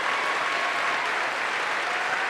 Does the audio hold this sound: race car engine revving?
no